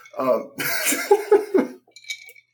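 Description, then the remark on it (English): A man has a fairly loud fit of coughing: one harsh, drawn-out cough followed by three shorter, rapid hacks, then a faint breath or throat sound as it settles. “He was trying not to cough. Didn't I – I had to cough.”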